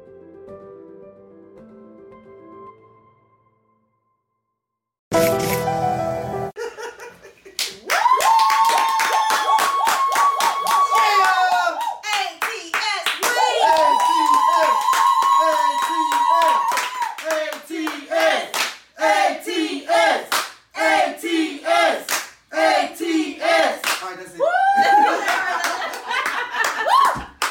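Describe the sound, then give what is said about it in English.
A crowd breaks into loud, sustained applause after a brief quiet moment, with dense clapping mixed with cheers, whoops and some laughter, continuing energetically for over twenty seconds. “You can give yourselves a little clap if you want to.”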